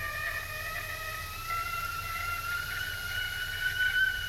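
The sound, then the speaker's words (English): A tea kettle whistles steadily for several seconds, a shrill, sustained high tone with stacked overtones that wavers slightly in pitch and swells a little toward the end over a low background rumble. “That was a tea kettle.”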